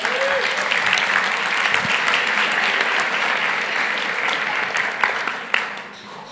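Steady applause from an audience as a woman is called forward to give a testimony, a dense wash of many hands clapping at an even loudness, with a couple of sharper claps standing out near the end.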